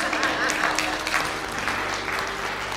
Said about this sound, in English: You guys can clap for that.